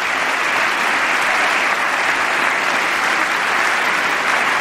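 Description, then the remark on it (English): Sustained, loud standing applause from a large crowd, everybody on their feet clapping, a dense steady patter of many hands without letup for several seconds, with no voices standing out. “Everybody's standing up to clap.”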